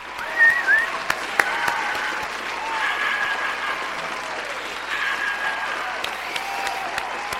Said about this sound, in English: Can I get a round of applause, please?